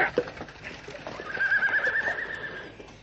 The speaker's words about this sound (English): Block the road, stop the horse. Stop it!